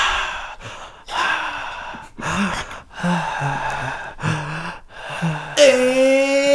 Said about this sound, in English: Heavy breathing solo.